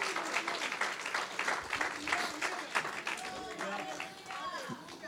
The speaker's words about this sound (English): No, el aplauso debe ser más fuerte. The applause should be even stronger.